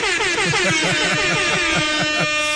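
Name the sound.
air horn blast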